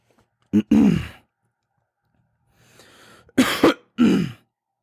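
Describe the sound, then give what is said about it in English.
A person clears their throat and coughs in a few loud bursts, trying to get rid of a frog in the throat, with a raspy breathy exhale between them and short pauses of quiet. “Once again, sorry for the minute coughing. I'm trying to get rid of this frog in my throat.”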